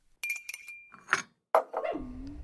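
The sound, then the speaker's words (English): A dog barks at a person, giving a couple of short, sharp barks and ending in a drawn-out whine, after a brief bit of light clinking at the start. “And Mochi's barking at me, so I think I'm gonna end this episode here.”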